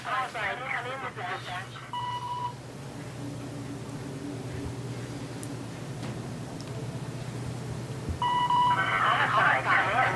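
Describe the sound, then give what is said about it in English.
A walkie-talkie rings like a phone: electronic ringing tones chirp at the start and end, each burst made of stacked warbling beeps, over a steady low engine-like hum in between. “Am I supposed to answer the phone? Yeah. Okay. Actually, it's not a phone.”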